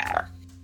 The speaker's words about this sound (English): Oh my god. That was disgusting. Yeah. That's not even a burp. That was just a death noise. Just like a demon crawled out of his throat.